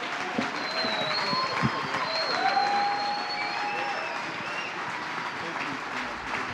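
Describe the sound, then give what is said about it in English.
An audience at a Back the Blue Day event applauds steadily for several seconds as honorees return to their seats, a dense, even roar of many hands clapping, with a few high whoops and whistles rising above it. “How about we give everybody one more round of applause as they find their way back to their seats?”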